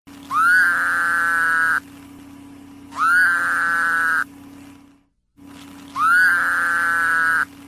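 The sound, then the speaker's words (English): Three loud, nasal, buzzing bleats from a Woodhouse's toad, each lasting over a second with a slight rising start, separated by short pauses over a steady low hum of background noise. “Okay, so that sounds like the Woodhouse's toad.”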